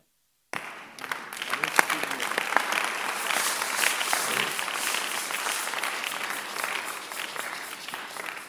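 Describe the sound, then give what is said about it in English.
An audience claps together during a sermon after a brief silence, a dense, steady patter of many hands that holds at a moderate level and stays fairly even throughout without building or tapering much. “This is the worst clapping since I started preaching for almost, I don't know how many.”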